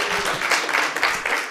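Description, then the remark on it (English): An audience claps to show they like Windows 7, a dense, steady burst of applause with many hands overlapping into a continuous crackling wash that holds at an even volume throughout. “Clap if you like Windows 7.”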